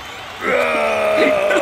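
A wrestling crowd bursts into loud cheering after a brief quiet moment, a sustained roar with high whoops and shouts rising over it.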